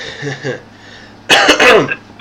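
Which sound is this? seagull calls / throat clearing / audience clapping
throat clearing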